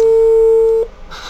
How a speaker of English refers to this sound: If he rings the right phone. Here we are, folks. He's ringing the phone as we speak.